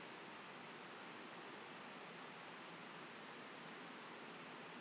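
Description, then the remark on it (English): A river rushes steadily past, a continuous, even wash of flowing water with no breaks, fairly soft, and no voices or other sounds over it. “As I join you in doing the same, I can hear the waters of this internal well within me echoed in the river that's running past.”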